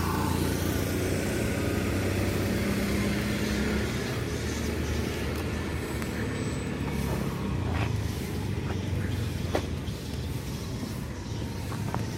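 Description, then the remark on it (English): A test ride on a new Ola electric scooter on a busy road: a steady, loud rush of wind and road noise with a low traffic rumble throughout, and no one speaking. “just sent us a test ride on the Ola scooter”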